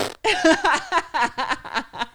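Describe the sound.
A voice imitates the fart of a dog jumping up while a person eats, with a string of about eight quick, buzzy vocal bursts in an uneven sputtering rhythm, loud.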